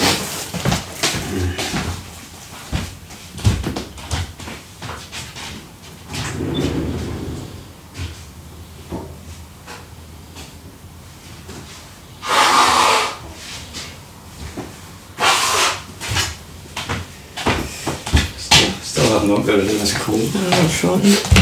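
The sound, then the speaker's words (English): Someone blows their nose, two loud, breathy honking bursts a few seconds apart, surrounded by soft rustling and handling noises. “And I need to blow my nose perhaps.”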